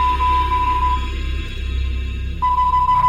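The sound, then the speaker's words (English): A steady, high electronic tone sounds for about a second, cuts out, then returns, like Morse code beeps keyed on and off over a low, constant rumbling hum. No voices. “That sounds like Morse code.”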